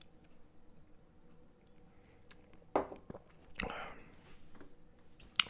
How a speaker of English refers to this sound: And that's the news. Time for a sip.